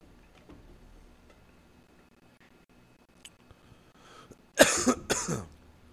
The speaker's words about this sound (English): That should make you cough for days. Why? It's hot smoke.